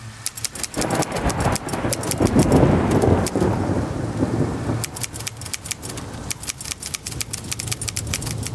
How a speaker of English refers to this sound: What's that? Sounds like thunder. There's a storm coming up. My gosh, does this thing control the weather too?